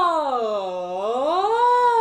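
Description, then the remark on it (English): A single sustained voice does a siren-like glide, sliding smoothly down in pitch and then sweeping back up, held at a steady, fairly loud level for about two seconds with no words. “Then you're gonna do sirens with your voice.”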